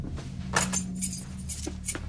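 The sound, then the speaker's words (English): A woman's car keys jangle in a few quick, bright metallic bursts as they are handed over, rattling irregularly over a steady low hum with no one speaking. “you got her car keys? Yeah. Give me them.”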